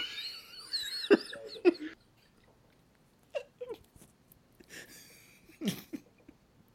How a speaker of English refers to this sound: Okay. I got a cough. I had some coughs.